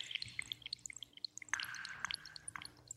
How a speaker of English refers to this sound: There's a piece called Rain on Ancient Keys. I created the drops of water on the DX7. Just by playing around with the waveforms and everything until I got exactly what I wanted.